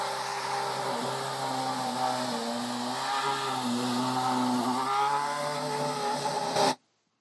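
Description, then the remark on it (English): The engine of a 2012 Force India Formula One race car at an airfield in the United Kingdom drones loudly and steadily with strong harmonic tones, pitch shifting slightly as it runs, then cuts off abruptly near the end. No one speaks. “Now, that might have been a little bit difficult to hear, but do you know what car that is? Yeah, the Force India Formula One car, 2012. And yeah, that was at an airfield in the United Kingdom.”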